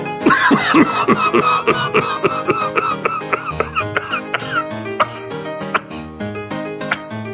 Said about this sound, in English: Can you try not to cough in it?